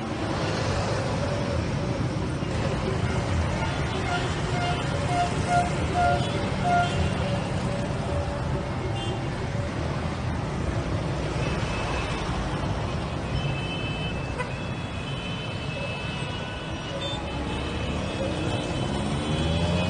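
A severe traffic jam in Surabaya fills the scene: a steady rumble of idling cars, trucks and buses, with engine drones, occasional hisses and faint chatter, loud and continuous throughout.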